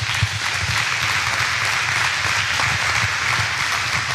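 A church audience claps steadily for several seconds, a dense wash of many hands at an even, sustained loudness with no voices breaking through.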